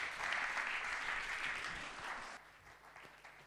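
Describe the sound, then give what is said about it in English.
A crowd claps in a dense, steady wash of applause that holds for about two seconds, then thins out and fades to a few scattered claps. “Give them a clap.”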